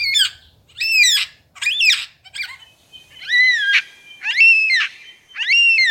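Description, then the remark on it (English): A male superb lyrebird mimics a yellow-tailed black cockatoo: about seven loud, wailing, drawn-out screeches repeated in a steady series, clear, with no talking. “Here's his impression of a yellow-tailed black cockatoo.”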